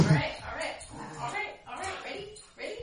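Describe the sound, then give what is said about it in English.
A dog plays tug of war with a person, letting out a steady run of playful growls, grunts and little yips in uneven bursts over a couple of seconds. “They're playing tug of war right now”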